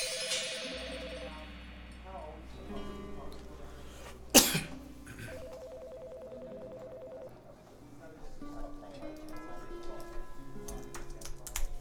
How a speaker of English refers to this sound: To this day, I can hear the way my fake dad coughs in my head. It's like a spoon hitting a plate.